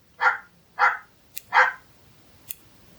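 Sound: dog barking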